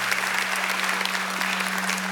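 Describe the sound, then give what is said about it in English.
A church audience applauds steadily for a church leader just shown on screen, a dense, even wash of many hands clapping at a constant loudness, with a faint low hum running underneath. “Yeah, absolutely. Applaud him.”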